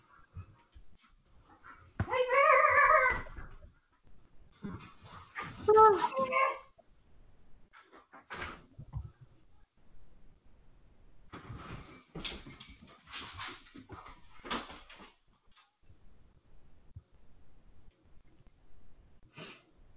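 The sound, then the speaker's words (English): Dogs whimper and yip in short, high-pitched bursts, with a few separate outbursts followed by scuffling, snuffling and restless movement noises. “Whoa. Calm down, dogs.”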